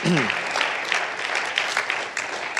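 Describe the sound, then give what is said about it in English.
A crowd claps steadily during a talk on evangelism, a dense patter of many hands at an even loudness throughout, with a brief voice at the very start. “Yeah, feel free to clap.”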